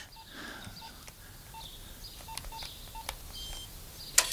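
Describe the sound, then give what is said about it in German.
A rapid series of short electronic keypad beeps from a mobile phone being dialed, each tone brief and distinct, over faint background hiss, ending with a sharper click. “Verdammt, wo habe ich mein Handy?”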